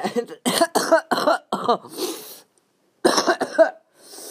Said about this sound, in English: The more I cough up stuff, that means it's funny. Like, the funnier it gets.